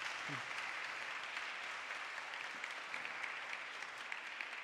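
An audience applauds steadily, a dense wash of many hands clapping at an even loudness that holds for the whole stretch without fading.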